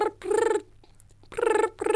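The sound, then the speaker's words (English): A voice imitates a phone ringing with rolling, buzzy trills in a repeating on-off pattern, loud voiced bursts separated by short pauses. “All right, I'm going to be the ringtone.”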